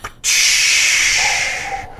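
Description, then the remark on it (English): A loud, steady pneumatic hiss like a blast door opening bursts in suddenly, holds for over a second and a half with a faint tone emerging partway through, then cuts off abruptly. “Open the blast doors of reality with a...”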